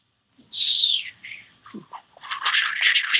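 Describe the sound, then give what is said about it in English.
A voice imitates the buzzing wings of sturges, louder and denser than a mosquito, with a breathy, hissing whir: one strong burst that fades, a few short sputters, then a longer rough stretch of noisy buzzing. “And then you hear the buzzing of wings. Louder and denser than a mosquito.”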